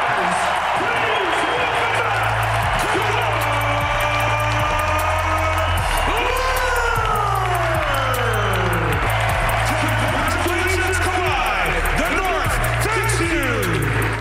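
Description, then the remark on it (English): A Toronto arena crowd cheers and applauds in a loud, unbroken roar for the whole stretch as Kawhi Leonard receives his NBA championship ring from Kyle Lowry before the game. Low, blocky bass tones and gliding pitched sounds run underneath the ovation. “And if you thought he was going to get booed, no, that's not how the Toronto faith will remember him.”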